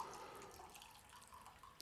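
A thin stream of coffee trickles steadily into a cup, fairly quiet, with a few small splashes and a brief bright clink near the end.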